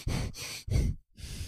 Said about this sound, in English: All I hear is you breathing.